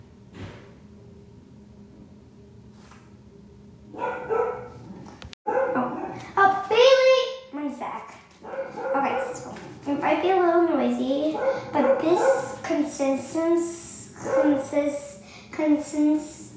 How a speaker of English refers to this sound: Sorry, my dog is barking.